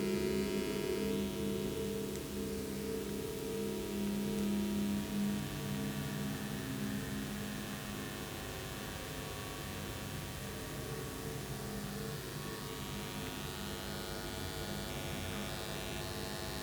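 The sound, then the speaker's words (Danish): A faint, steady electromagnetic hum from a current-carrying object, picked up by a microphone made to hear electromagnetic sound, drones on without a break. It is low-pitched with a thin buzzy overtone and light static, and no voices are over it. “Man kan høre den ligesom summer lige så stille.”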